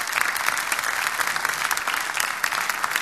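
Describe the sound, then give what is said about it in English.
A crowd claps steadily for a few seconds after hearing that Max Preps voted North Florida Christian School baseball number one in the nation in schools under 1,000, a dense, even patter of many hands at a fairly loud, constant level with no voices rising above it. “You can applaud that if you would like.”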